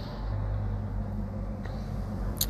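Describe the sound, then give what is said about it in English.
A steady, low rumble of road traffic nearby, continuous and fairly quiet, with a couple of brief faint ticks near the end and no voices. “It's peaceful even next to the traffic.”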